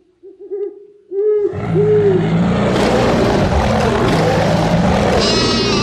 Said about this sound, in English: I was surprised to hear an owl in that one.